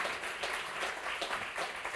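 A crowd claps its hands after a testimony in steady, dense applause, a continuous crackle of many overlapping claps that holds an even loudness for the whole stretch, with no voices on top.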